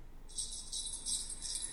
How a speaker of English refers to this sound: It's a jar of coins falling down the stairs. It sounds jingly.